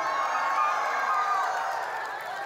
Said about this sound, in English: So Philistine army, start running in place with fear on your face. And verse 52, the men of Israel and Judah rose with a shout and pursued the Philistines as far as Gath and the gates of Ekron. So you start running and shouting really loud as you do.